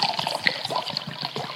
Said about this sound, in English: They are pouring the wine in the cup